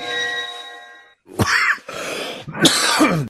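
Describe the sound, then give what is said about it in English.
A steady ringing tone fades out, then three harsh coughs follow in quick succession, the last one longest and roughest, with no talking. “I thought you were done coughing.”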